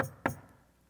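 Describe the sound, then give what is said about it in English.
Two sharp knocks on a wooden door, fairly loud, spaced about a quarter second apart, each fading with a short hollow ring into quiet; the knock comes at Jude's door while he is writing a letter. “And he's 5 to 6 paragraphs in when a knock comes at the door.”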